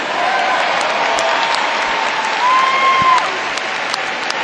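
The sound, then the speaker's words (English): A large dog show audience claps steadily and continuously as the toy group walks into the ring, with a brief rising whoop or whistle cutting through near the end, the applause loud. “You'll hear people yelling and clapping again.”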